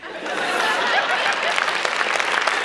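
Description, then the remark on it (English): A crowd applauds steadily, many hands clapping in a dense, bright wash of noise that holds at an even, fairly loud level with a few scattered chuckles mixed in. “Why are you clapping?”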